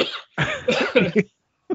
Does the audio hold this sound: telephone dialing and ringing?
no